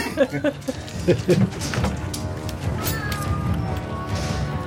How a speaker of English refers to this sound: Even the cat disagreed with that. Even the cat said, fuck you.